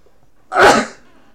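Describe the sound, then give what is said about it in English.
A single loud sneeze bursts out sharply and fades within half a second, with quiet before and after. “Excuse me, I'm going to sneeze.”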